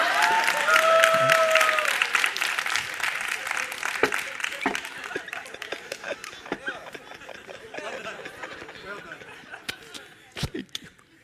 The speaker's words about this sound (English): When I'm 85, I'll be more in love with my wife than when I was at 25, when I first fell in love with her. You should clap for that, by the way.